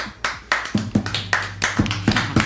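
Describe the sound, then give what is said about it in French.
Hand clapping in a loose, uneven rhythm, a string of sharp, bright claps, roughly ten over a couple of seconds, some overlapping as if more than one person is clapping, with no talking. “Nous applaudissons de haine parce que dans les émissions, il y a de l'amour, il n'y a pas d'applaudissement.”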